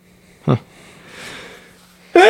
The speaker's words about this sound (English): Bless you. Wow, that echoed